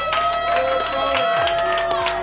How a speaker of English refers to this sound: Can we give another round of applause, all right, to Sarah Edmondson?